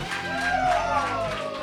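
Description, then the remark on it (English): A loud crowd cheers and applauds in a dense, steady roar of clapping and shouting, with a few whoops rising above it, lasting a brief moment, as the live debate show Pick a Side, Stupid begins. “See, that's what I'm talking about. Best crowd ever.”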